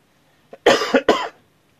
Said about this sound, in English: Had to get that cough out.